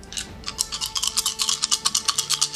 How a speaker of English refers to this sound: I'm sorry, this is a lot of dice. Sounds like you're brushing your teeth.